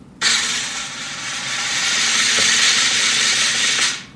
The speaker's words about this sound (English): So Mitchell, go ahead and hit the drum roll.